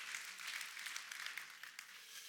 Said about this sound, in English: And that was a weak clap, guys.